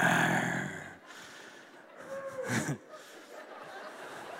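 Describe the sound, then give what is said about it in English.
An audience imitates lion growls, a rough, noisy roar that fades after a second, then a second ragged burst mixed with snorts and chuckles before trailing off. “I imagine it getting darker that night as Daniel was walking and he could hear the growls of lions. Show me some growls tonight.”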